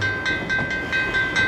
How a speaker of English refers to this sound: The last train car passed, and the crossing bar was raised.